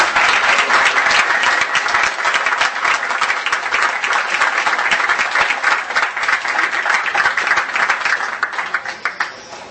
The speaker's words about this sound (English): That was wonderful. Big round of applause again.